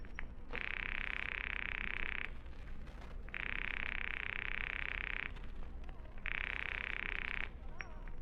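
A telephone rings on the line in three long, buzzy bursts separated by short pauses, steady and fairly loud over a faint background hiss, with no one speaking, as an operator rings a husband's office number.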